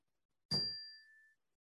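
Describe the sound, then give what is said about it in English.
A single bell strike with a sharp metallic onset, followed by a clear, high ringing tone that slowly fades away over about a second, heard alone in silence. “I'll ring the bell once more.”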